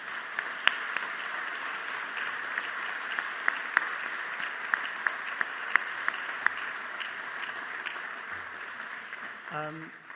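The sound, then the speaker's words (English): Sustained applause from an audience at an evening event fills the whole stretch, a dense steady patter of many hands with a few sharper individual claps standing out, and a voice briefly begins near the end. “I think we have another round of applause”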